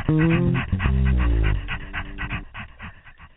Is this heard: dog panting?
yes